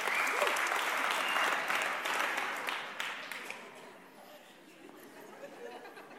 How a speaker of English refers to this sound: You open the Bible, Psalm 47, verse 1. Oh, clap your hands, all ye people. Shout unto God with a voice of triumph.